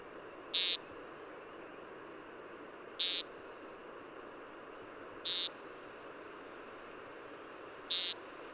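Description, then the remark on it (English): A male American woodcock (Scolopax minor) gives four short, buzzy nasal display calls, evenly spaced a couple of seconds apart, each one clear over a steady hiss of night insects or frogs. “Males of the American woodcock, Scolopax minor, make this buzzy sound at dawn or dusk as part of their display to attract the ladies.”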